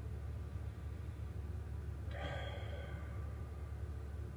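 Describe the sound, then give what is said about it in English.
A single deliberate, controlled breath through the nose, a sharp airy exhale lasting under a second midway through, over a steady low background hum, with no talking. “I could literally lower the oxygen in which and how I'm breathing. Like this, where I'm breathing from.”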